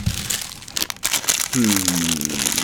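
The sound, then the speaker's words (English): Crackly crinkling of a plastic bag of caramel M&M's being squeezed and handled, loud and irregular, with a voice joining in over the rustling during the second half. “I'm gonna say peanut M&M's.”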